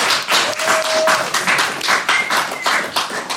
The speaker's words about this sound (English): Let's have a round of applause for both of our teams.